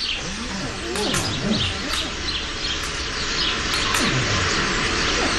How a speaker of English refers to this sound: Listen carefully. Birds. They sense the presence of the seeds.